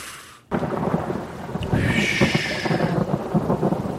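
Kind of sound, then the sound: nature, rain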